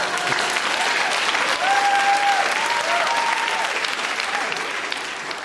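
A large audience claps steadily and continuously for several seconds in dense applause, with a brief whistle-like cheer rising over it partway through before it slowly tapers.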